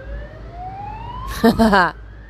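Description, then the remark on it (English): An emergency siren wails steadily upward in pitch outside, continuing throughout, while a person briefly speaks partway through. “As I try to figure out what's going on in my mind and let it pass, sirens start happening.”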